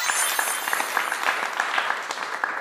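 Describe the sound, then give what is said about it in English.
A steady applause sound effect added by an editor: a crowd's dense patter of many hands clapping continuously at moderate loudness for a few seconds, with no voices standing out. “Bam, boom or an applause?”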